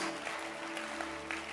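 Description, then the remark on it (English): An audience claps hands together, a dense, steady wash of many overlapping claps sustained throughout, with a faint hum underneath and no clear voices. “Clap your hands.”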